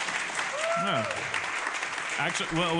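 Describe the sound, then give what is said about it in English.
Audience members from Rhode Island clap steadily throughout when asked to identify themselves, a dense, even wash of applause. A few voices call out and whoop over it near the start and again at the end. “Who do we have here that's actually a Rhode Islander? Clap.”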